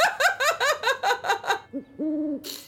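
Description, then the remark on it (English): A person imitates an owl, voicing a quick run of about seven short, bright hoots, then two longer, lower hoots, ending with a brief breathy burst. No words are spoken. “I like how you changed it to hoots, because now he's just standing there squeezing an owl.”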